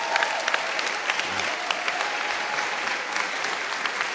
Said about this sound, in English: Your clap was not an honorable one at all. It's a weak one.